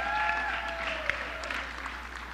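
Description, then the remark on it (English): An audience claps steadily for a boy who has come up to help, in a dense, continuous wash of applause at moderate volume, with a thin tone sliding slowly downward over the start of the clapping. “That was a great hand clap there you received.”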